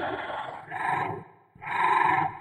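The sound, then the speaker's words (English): A harsh creature screech for the Volcra, made from performed human moans and cries processed through plugins: two long rasping bursts with a brief gap between, loud and gritty with bestial, roaring character. “We wanted to have a very bestial screech that if you stripped away some of that feral quality, you would hear a man or a woman screaming almost as if for help.”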